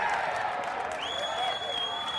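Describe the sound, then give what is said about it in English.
A small local football crowd of a couple of hundred people cheers and claps a goal scored from a free kick, a steady, modest roar of voices and applause, with a thin high whistling tone joining halfway through. “I didn't hear much cheering. I know it's local football, but... There's a couple of hundred of us.”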